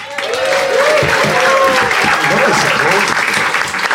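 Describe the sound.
Sustained audience applause as someone begins the case for the prosecution, a dense, steady wash of clapping at full volume, with faint voices and cheers threaded through it.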